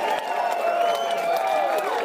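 A crowd applauds steadily to congratulate someone on paying off student loan debt, with clapping mixed with whoops and cheering voices rising over it. The sound is full and fairly loud, holding constant for a couple of seconds.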